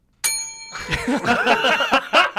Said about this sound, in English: That's not how you're abusing the bell, and now I abstain from this conversation. The bell, man. That needs to go.